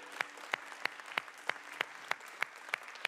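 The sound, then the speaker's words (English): An audience gives the Lord a hand clap of praise, with a dense wash of hand clapping pierced by sharp, loud accented claps landing on a steady, even beat about three times a second. “Let's give the Lord a hand clap of praise real quick.”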